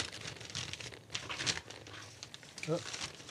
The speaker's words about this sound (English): Open her up. Do I have to open it up nicely? No, you don't have to open it nicely. You can just tear the hell out of it. It is a very pretty plaid paper, though.